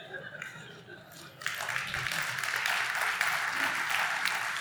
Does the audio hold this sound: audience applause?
yes